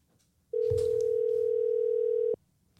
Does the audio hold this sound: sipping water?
no